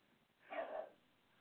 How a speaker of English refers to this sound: You hear my dog barking in the background?